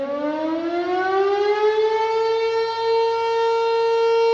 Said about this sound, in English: The siren wails from behind the town's volunteer fire station and can be heard for miles. Town officials steadfastly assure residents it's a tradition meant to honor first responders and is not related to the sundown ordinance.